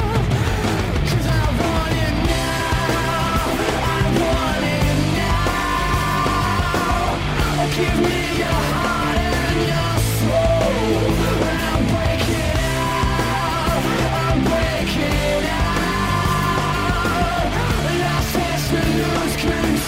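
A loud rock song plays throughout, a driving guitar riff over pounding drums and bass, with intense, strained vocals riding on top of the dense, steady wall of sound.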